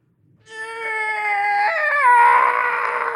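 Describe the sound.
A person's voice imitates the Howie scream, a stock movie scream: one long, loud, high-pitched wail that holds steady, then wavers and strains toward the end, with no other talk.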